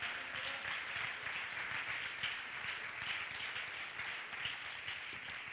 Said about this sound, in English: Oh, clap your hands and love him right now.